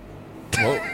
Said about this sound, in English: Whoa, what is that? That was a big-ass truck. Okay, so I'm pretty sure... Why can I hear the brakes?